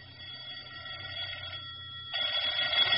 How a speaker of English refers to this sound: The phone was ringing as I stepped into my apartment.